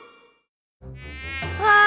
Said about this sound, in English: Go away, despicable mosquitoes! Daddy, the mosquitoes bit me again. I've got 3 bumps now. I don't like mosquitoes. These mosquitoes are terrible.